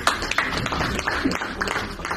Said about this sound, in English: Another round of applause as the team goes back to their seats.